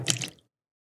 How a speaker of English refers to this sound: Now pour it in.